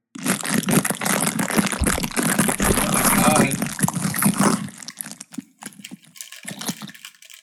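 A loud, sustained crunching and crackling noise made right at the microphone lasts about four and a half seconds, followed by brief, softer murmured vocal sounds.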